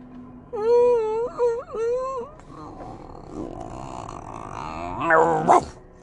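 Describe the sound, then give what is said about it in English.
A person imitates a dog named Muffy, first with a wavering, whining howl, then a rough, low growl that builds into a couple of sharp, bark-like yelps near the end. “Muffy, what kind of bark and tone is that?”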